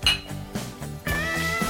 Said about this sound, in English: Clink.